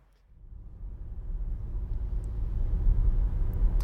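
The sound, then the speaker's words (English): A car drives along with a steady low engine and road rumble that swells from quiet to fairly loud over a few seconds, with no voices. “Well, let's get back in the car and carry on driving.”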